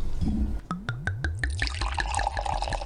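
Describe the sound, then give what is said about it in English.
Wine glugs out of a bottle into a glass in quick, rhythmic gurgles, settling into a steady splashing stream as the glass fills. No one speaks. “We pour wine, I throw questions okay. at you”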